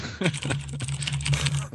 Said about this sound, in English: Who's typing?